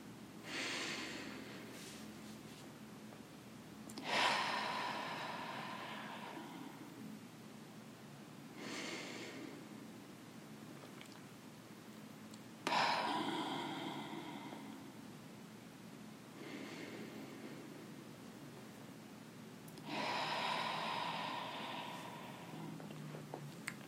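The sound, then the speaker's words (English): Three slow, deep breaths, each a soft airy inhale through the nose, a pause at the top, then a longer, gentle exhale through the mouth, otherwise quiet with no talking. “So let's take three together here now. In through the nose, pausing at the top, out through the mouth, gently.”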